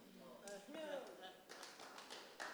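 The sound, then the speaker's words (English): Scattered hand claps, a handful of sharp irregular slaps, mostly in the second half, with voices murmuring and calling out underneath. “Thank you for those hand claps.”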